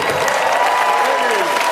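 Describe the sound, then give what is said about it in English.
Dense, steady audience applause for O.J. Simpson on SNL fills the short moment, a loud wash of many hands clapping at once, with a few cheering voices rising through it. “It's always good to hear applause for O.J.”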